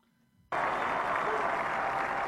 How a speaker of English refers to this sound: I wonder if the clapping was staged. They have a clap track.